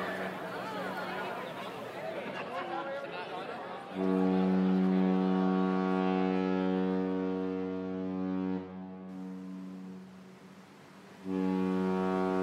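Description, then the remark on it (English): A crowd chatters briefly at a dock before a deep, loud ship horn sounds one long sustained blast as the ship sets sail, then falls quiet and starts a second blast at the end. “Everyone cheered and waved goodbye as the ship set sail.”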